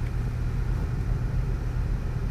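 A car engine rumbles low and steady throughout, a continuous droning hum as the car slowly reverses down an on-ramp, with no voices or other distinct sounds.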